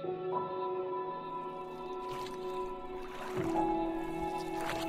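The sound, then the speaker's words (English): Oars dip and splash through water as a boat is rowed, in a few spaced strokes, each a soft watery swish, set against a steady tonal hum or music bed. “Papa, why do we have to row our boat to school every day?”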